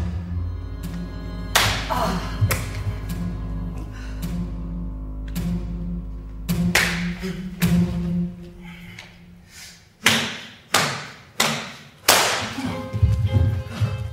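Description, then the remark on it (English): Sharp slaps, thuds and stomps from four dancers performing the piece Hit, tapping, twisting, leaping and slamming against the floor and each other, irregular at first, then a run of four heavy evenly spaced hits, all over a low, droning musical backdrop. “created a dance for 4 people that included lots of tapping, twisting, leaping, and slamming.”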